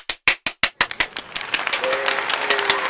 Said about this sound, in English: Yes, I'm actually going to put in a clap there so you don't get it.